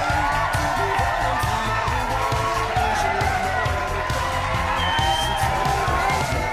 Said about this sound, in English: Big round of applause. Let's give it up. Another bridesmaid and groomsmen. Right behind them. Keep those hands clapping for them. Other bridesmaids and groomsmen. Big round of applause, let's give it up, come on!